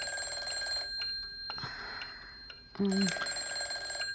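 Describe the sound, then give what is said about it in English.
A telephone bell rings with steady, bright metallic tones, fairly loud, while a person speaks briefly over it. “Answer the phone, Jenny.”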